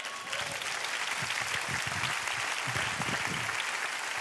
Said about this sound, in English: That's where you clap.